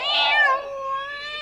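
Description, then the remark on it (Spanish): A single drawn-out meow from Panchito Cabrera, a music-loving kitten, fairly loud, rising at the start then settling into a steady, slightly whiny tone that holds for over a second with no talking. “Sean bienvenidos a un nuevo episodio de los Discos Vivientes, presentando al gatito melómano Panchito Cabrera. ¡Salude, gatito!”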